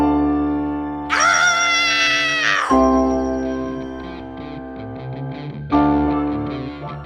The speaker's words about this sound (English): This is Screaming into the mic.